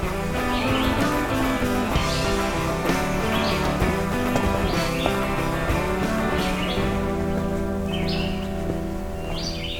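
A Black-throated Green Warbler sings several short, high phrases at intervals along a hiking trail, over a dense, steady background of sustained tonal sound.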